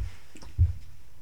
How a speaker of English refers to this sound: No worries. I'm gonna reach down and grab my water.